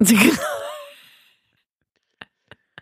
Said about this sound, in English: When you hear me sneezing in the bathroom, it's usually because I'm like plucking nose hairs.